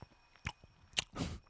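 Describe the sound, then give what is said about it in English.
Crisp crunching bites followed by a wetter chewing sound, someone eating crackers with goat cheese, a few brief bursts in quick succession with no talking. “Sorry, I'm eating goat cheese and crackers right now.”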